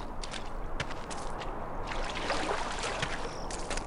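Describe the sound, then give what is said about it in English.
Steady splashing and sloshing of shallow water, with repeated soft bursts like feet wading across a river at a shallow crossing where the road ends in the water, over a continuous watery rush and no voices. “I think this is just a place where the river is not very deep, so you can just cross it and wade through the water.”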